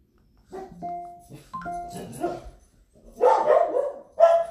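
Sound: dogs barking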